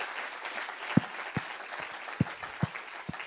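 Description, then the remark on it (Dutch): An audience applauds to give the Lord a hand, in a steady, dense wash of clapping, with a handful of sharper, louder individual claps popping out over the crowd noise. No one speaks. “Ja, kom, geef God een applaus.”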